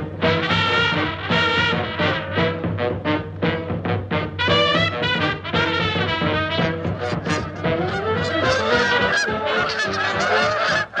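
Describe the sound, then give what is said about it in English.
A large flock of pale-bellied Brent geese calls continuously as it flies overhead, arriving in Ireland for the winter from nesting grounds in the high Canadian Arctic; a dense, overlapping chorus of honks and gabbling notes that stays loud throughout, with no talking. “Oh, there they are, flying overhead, the pale-bellied Brent geese, arriving into Ireland now from their nesting grounds in the high Canadian Arctic, a journey of some 4,500 kilometres or more.”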